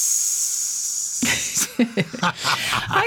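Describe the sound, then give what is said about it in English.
A voice imitates a long, steady hissing 'psss' for over a second, fairly loud, followed by short, choppy vocal bursts. “For some reason, I still remember my Catholic grammar school Latin teacher, an eccentric Irish priest, saying in the mid-1960s that the only true example of onomatopoeia is piss.”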